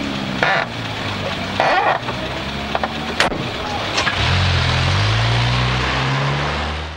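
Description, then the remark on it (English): In a 1971 recording, a car engine idles with a low rumble, then revs up and pulls away, its steady drone rising in pitch as it drives off, with some clunks and rustling early on. “Here's my car.”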